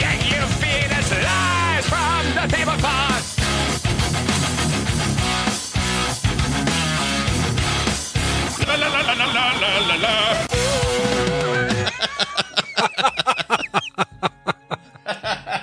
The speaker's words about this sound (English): I was like, where's this going? And then it's some of your screams from Resident Evil.